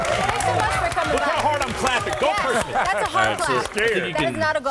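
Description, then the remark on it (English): A studio audience on the show Sports Nation claps and cheers throughout, with dense, steady applause and many overlapping shouting voices, staying loud the whole time. “That's not a golf clap.”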